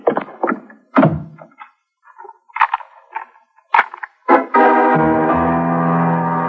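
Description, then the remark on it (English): A series of heavy wooden thuds and knocks, ending in a front door slamming shut, followed at once by a sustained, swelling musical chord. “When I heard the front door slam, I started kicking my way out.”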